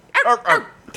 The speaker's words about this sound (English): Two barks.